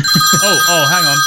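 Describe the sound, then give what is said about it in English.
A telephone across the table rings with steady, high electronic tones held through the whole moment, while a voice-like vocal sound rises and falls over it, fairly loud. “Hang on. Oh, phone's always across the table. Hold on. Hello?”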